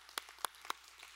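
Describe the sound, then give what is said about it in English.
A few scattered, sparse hand claps from a church audience applauding the news that the 2022 budget passed, three sharp distinct slaps roughly a quarter second apart, fairly quiet over a low steady hum, with no voices. “You guys could applaud, which is good.”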